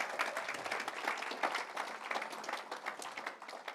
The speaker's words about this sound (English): I think she deserves another round of applause.